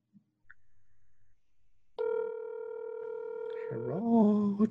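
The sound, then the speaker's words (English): After a near-silent start, a steady electronic ringing tone from an outgoing phone call sounds clearly for about two seconds, then a lower, wavering voice-like sound takes over near the end. “Okay, let's try him again.”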